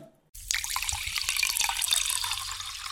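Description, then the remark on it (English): After a brief silence, steady bubbling water starts up, a fizzy gurgle full of small pops and splashes that keeps going to the end, with no voices. “But there was something else special about the Symphony of the Seas. The bubbles.”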